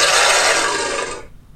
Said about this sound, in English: Is there going to be a lion? No, that's a... dragon. That did sound like a... That was a dragon. It's a horse as well, I think. What? Okay, that sounds like a horse. What the hell was the dragon?